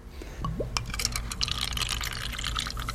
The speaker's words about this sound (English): First, samples from our soda, the one from the 1979 newspaper, are poured into little cups.